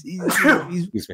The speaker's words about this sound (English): God bless you.